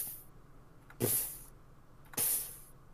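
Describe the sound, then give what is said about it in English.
A voice imitates sparks fizzling out, making two breathy, hissing bursts about a second apart, each bright and sharp at the start and then trailing off, with quiet in between. “Yeah, see a bunch of sparks starting to crackle, and then you'll... They'll go...”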